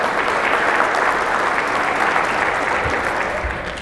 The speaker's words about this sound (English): I'm hearing some clapping. Are they here? Yes, where at? Back here. Thank you.